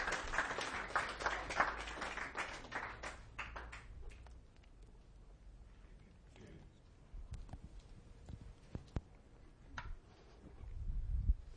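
An audience breaks into a big round of applause as two people come up to join the speaker, dense and loud for a few seconds, then thinning into scattered claps and light taps before a low rumble rises at the end.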